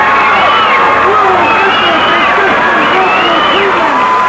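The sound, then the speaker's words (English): A large crowd in a town square cheers and shouts as balloons are released into the sky ahead of an approaching rainstorm. It is a dense, continuous roar of many overlapping voices, loud, holding steady for a few seconds. “The crowd loved it.”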